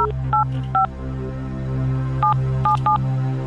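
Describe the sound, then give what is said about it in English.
Six short touch-tone beeps of a different phone number being dialed for a radio contest call, in two quick groups with a pause between, over a low steady hum, with no one talking. “Different number. Answer your phone.”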